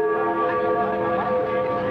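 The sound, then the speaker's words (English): The Freedom Bell in Berlin rings out over the newly opened border with a sustained, resonant hum, its layered tones hanging steadily in the air over a faint background murmur. “Berlin's famous Freedom Bell rang out over the newly opened border.”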